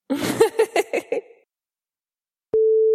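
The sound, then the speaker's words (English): A Skype call-dropped tone: after a few short laughing bursts and a brief silence, a steady, mid-pitched electronic beep starts abruptly and holds at a constant level to the end. “Uh-oh, have I lost you again? Oh, no. Skype is...”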